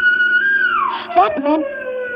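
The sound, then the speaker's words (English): A distant state prison siren, signalling an escaped prisoner, wails at night in a steady, sustained tone that slowly slides downward in pitch, heard while driving, with a brief muffled voice-like murmur passing over it midway. “And then I heard that siren in the distance.”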